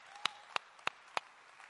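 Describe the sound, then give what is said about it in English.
Hands clapping in praise to God at Greater Life Church, four crisp claps in a steady, even rhythm, fairly quiet against a faint background hum, with no talking. “Oh, yes, somebody clap your hands and give him praise right now.”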